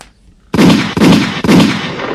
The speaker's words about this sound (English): Three gunshots for Eon.